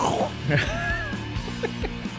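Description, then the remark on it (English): A voice imitates a bobcat with a raspy, throat-clearing growl, then a thin rising-and-falling whine and a few short gravelly grunts, moderately loud and without words. “Is that supposed to be a Bobcat?”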